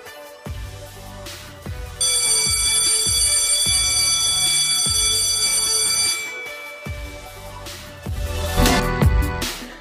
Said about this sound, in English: All right, yay! You just heard the bell. That means I'm done with all the questions for this episode.